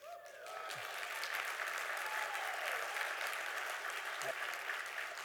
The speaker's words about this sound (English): Way to go. We applaud you. It's awesome, awesome, awesome.